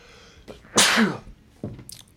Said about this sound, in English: Well, I'm gonna sneeze.